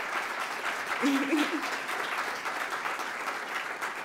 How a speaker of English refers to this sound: My team in Washington, D.C. and here in the district, if you are a member of my team and you know who you are, could you please stand just so folks can give you a round of applause?